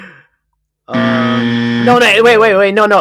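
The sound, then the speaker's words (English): A loud, harsh game show timer buzzer blares as a single sustained tone, signaling that time is up for an answer. After about a second, people start talking excitedly over it while it keeps sounding. “The timer went, dude.”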